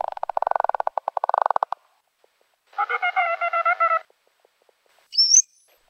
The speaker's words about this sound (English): Okay, now let's listen to the bottlenose dolphin. It also starts with echolocation, and then the other two registers.